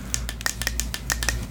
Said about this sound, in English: All the clicking is us testing our wands. Making sure our wands are glowing.